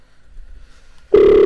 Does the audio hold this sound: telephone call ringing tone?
yes